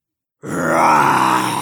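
After a moment of silence, a single loud, gravelly ape roar bursts out and holds steady for over a second, rough and strongly voiced with a throaty, growling edge; the apes roar back at a lightning storm while beating their chests.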